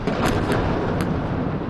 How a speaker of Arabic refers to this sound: أصوات انفجارات الأحزمة النارية ودمار المربعات السكنية لا يعلو عليها صوت في غزة كلها من الشمال إلى الجنوب. قوة الاحتلال الإسرائيلي واصلت لليوم 93 توالياً دك غزة مخلفة عشرات الضحايا الجدد